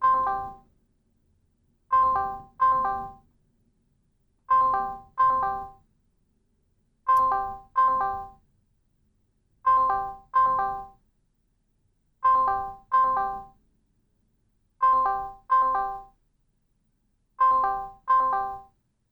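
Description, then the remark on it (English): A Discord call ringtone on a phone repeats a bright, two-part chiming tone about every two and a half seconds, ringing steadily and clearly for the whole stretch as a friend is called, with no one talking. “I realized that I can call him on my phone on Discord also.”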